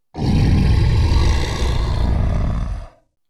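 A deep, rumbling creature growl swells into a loud, harsh roar that holds steady for nearly three seconds, then cuts off abruptly. No voices accompany it.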